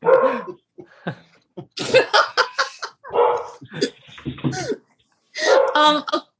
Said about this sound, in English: That's my sister's guide dog.